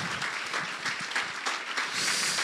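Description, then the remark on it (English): A crowd claps and applauds steadily, clapping in advance for what God is going to do over the next 6 years, a dense wash of many hands with no one speaking over it, swelling slightly louder toward the end. “Come on, will you just clap in advance for what God is going to do over the next 6 years?”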